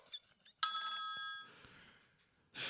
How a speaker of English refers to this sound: you're nearest to the phone. Answer it. It rings so intermittently. Is it stopped?